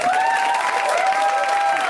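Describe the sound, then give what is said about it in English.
An audience at the end of a comedian's stand-up set claps steadily for about two seconds, a dense, even wash of hand claps, with some sustained cheering or whoops riding above it. “No, but seriously, you should all just clap a lot because I'm only going to be 20 for like 3 more hours.”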